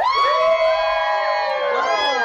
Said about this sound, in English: Okay, so it's time, guys. We're going to do this gender reveal. Okay, so it's Team Tapatio or Team Cholula. So if you think we're having a boy, cheer.